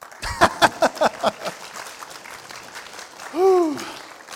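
A short burst of clapping at the end of a sermon on the book of Romans, about seven sharp, evenly spaced claps that quickly fade out, followed by a single brief rising-and-falling vocal whoop.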